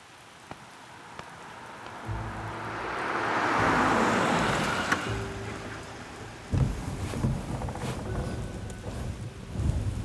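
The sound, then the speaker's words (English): Steady rain hisses on a wet street in the morning as a car approaches, its tire swish swelling to a peak midway and then receding, followed by a few low thumps and continued rainfall. “why don't you go get the car? It's just down the block.”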